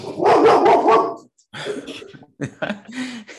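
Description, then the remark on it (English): A dog barks several times in quick, loud bursts, with short pauses between the outbursts and a higher yip near the end. “Wait, what player did your dog just bark at?”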